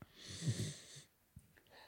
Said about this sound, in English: Ridley the dog is lying as we speak. Can I see if you can hear him snoring?